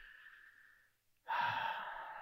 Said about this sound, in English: Breathing